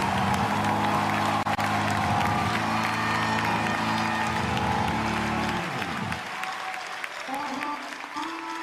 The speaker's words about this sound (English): Clap your hands for great light.